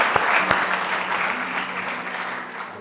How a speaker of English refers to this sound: Can you give Jesus a clap offering as the musicians come up?